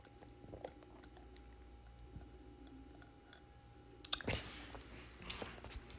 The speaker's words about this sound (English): So, okay, sip time.